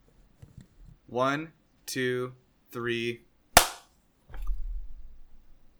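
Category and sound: human body sound, hand clap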